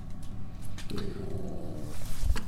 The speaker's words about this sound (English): Oh, dogs are barking. Hang on. Why are they barking? Should we investigate?